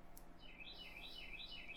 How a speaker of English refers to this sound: Dude, listen to the birds. You can always tell when we're recording in Tennessee because you can hear those lovely songbirds in the background.